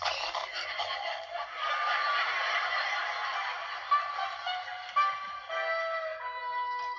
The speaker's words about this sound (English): So, Betty has a relaxation tape of, it sounds like just seagulls and, you know, the waves at the beach and everything like that.